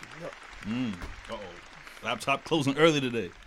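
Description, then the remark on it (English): A short burst of applause, a few pairs of hands clapping in a quick, uneven patter over lively overlapping voices, growing louder in the second half. “Round of applause.”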